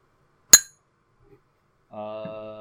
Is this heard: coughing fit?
no